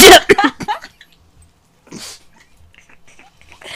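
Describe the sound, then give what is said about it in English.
A loud, exaggerated gulp made with the throat, a sharp burst up front followed by a shorter, softer swallow-like sound and faint mouth noises. “Gulp as loud as you can.”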